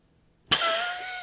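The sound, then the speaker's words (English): A single loud cough bursts out abruptly after a moment of silence, a harsh throat-clearing hack to clear a bubble stuck in the throat, rasping on briefly before fading. No one speaks. “Sorry, I got a bubble stuck in my throat.”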